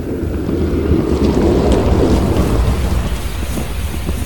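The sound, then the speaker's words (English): A loud, continuous rush of churning, splashing water over a deep rumble as a car with its windscreen wipers on comes up out of the sea at a beach, steady for the whole stretch with no voices. “It's got your windscreen wipers on, it's coming out the sea!”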